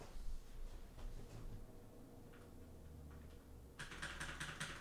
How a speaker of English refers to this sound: Keyboard ASMR, first one to do it.